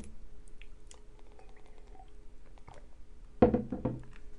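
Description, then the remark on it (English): Someone sips tea: a few seconds of faint clicks and soft handling noise, then a short, fairly loud slurp followed by a softer second swallow-like sound. No one speaks. “Sip of tea.”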